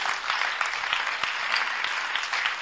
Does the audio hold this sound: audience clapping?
yes